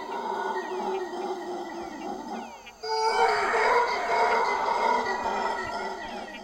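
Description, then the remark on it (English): A dense, steady chorus of tropical rainforest animal calls in the undisturbed forest on BCI: overlapping chirps, whistles and wavering cries layered together, growing fuller and louder about halfway through, with no talking. “This area of BCI is well maintained from the undisturbed forest, which echoes sounds unrecognizable to those unfamiliar with the tropics.”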